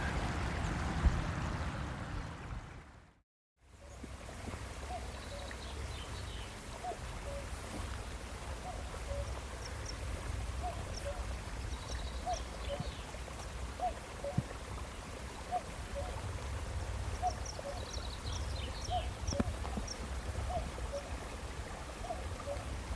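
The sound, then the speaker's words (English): A cuckoo calls over and over in a steady rhythm across a small glen high up in Assynt, Sutherland, in the north of Scotland, its two-note cry faint against the constant rush of running water. “And that's the sound of a cuckoo calling across a little glen high up in the north of Scotland in Assint.”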